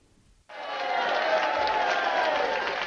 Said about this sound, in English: That sounds like booing, doesn't it? That was tricky. It does.